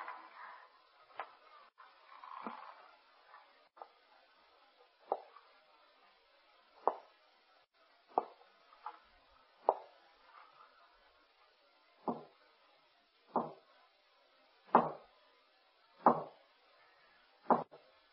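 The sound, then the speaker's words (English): Slow, heavy footsteps thud up wooden stairs in an old house, roughly a dozen evenly spaced steps that grow louder toward the end, with no voices. “I heard the feet coming up the stairs, or was it just the creaking of the old house?”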